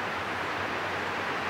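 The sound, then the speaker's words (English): Steady rain falling, a constant, even hiss with no breaks or distinct drops standing out, and no voices. “And I love the rain from above coming down.”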